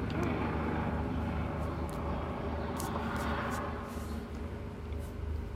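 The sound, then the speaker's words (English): A helicopter drones overhead, a loud, steady low rumble with a throbbing engine tone that holds for several seconds and eases off only slightly toward the end. “I'm going to wait till the helicopter.”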